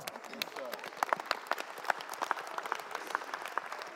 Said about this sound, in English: You don't clap well.